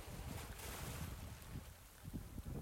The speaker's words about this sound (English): Listen to the water.